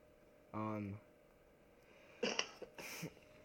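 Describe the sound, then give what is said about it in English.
A short voiced hum, then after a pause a man gives two or three quick, breathy coughs in close succession, moderately loud. “He coughed.”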